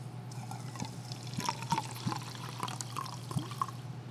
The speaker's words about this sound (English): Pour some in here.